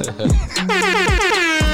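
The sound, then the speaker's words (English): Loud, brassy DJ air horn blasts from a DJ fire off in quick succession, with bright stacked harmonics and falling sweeps between repeated bursts, filling the whole short stretch with no talking, in Houston, Texas. “I want to say shout out to … one time for the air horns, baby.”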